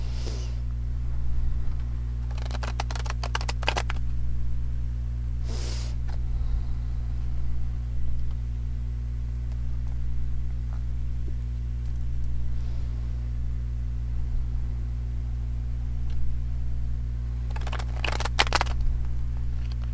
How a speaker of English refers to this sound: Okay, you know, I'm getting better at shuffling. So, guidance card for today, 10 of Wands, which is titled Suppression in the Osho Zen.